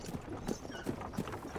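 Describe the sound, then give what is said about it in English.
Oxen plod along pulling a wagon, their hooves striking in a steady clopping rhythm of about three beats per second, with faint metallic ringing from a heavy clanking bell and no voices. The oxen make occasional noises to each other as they go. “The oxen make occasional noises to each other as they go, the heavy bell clanking.”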